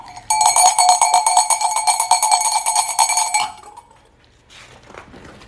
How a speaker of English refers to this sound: What's that bell? You tell me. Germany. The Germany bell.